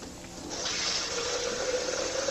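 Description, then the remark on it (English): Water splashes and gurgles steadily as it is poured into a blender jar, a broad rushing fill with a rising tone as the jar fills, continuous with no talking. “Okay, so this is the blender. I'm going to take and put some water in it first.”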